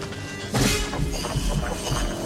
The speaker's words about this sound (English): is that when it switches over to the Predator Vision, you're still hearing the heartbeat, the thump, thump, thump, thump, thump, and they're matching that really well to the actual chase music, that horn.